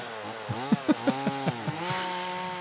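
A chainsaw engine idles and then revs in a quick series of sharp bursts before settling into a steady drone, loud with no voices.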